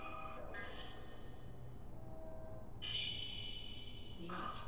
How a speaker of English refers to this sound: That was interesting. Here comes the train.